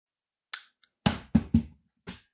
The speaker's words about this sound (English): What I'm going to do is I'm going to press the button on the back of the action figure. The Skellington one, if anyone's interested. And it's going to hit the desk.